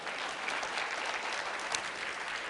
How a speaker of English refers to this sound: So may I please welcome, please give him a big round of applause,